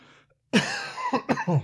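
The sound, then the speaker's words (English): A harsh cough bursts out from a sick person with a tight chest, followed by a quick series of three shorter, rasping coughs, with no talking around them. “I've been coughing a lot more throughout the day.”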